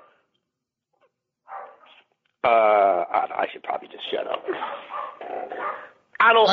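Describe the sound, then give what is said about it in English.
A dog named Copper barks excitedly while work is being done in the house, a loud burst of barks with a whine or two, while a man keeps talking over it. “Ironically, it's a dog whistle situation. So that's with like maybe all this Lamar talk is causing Copper to go nuts.”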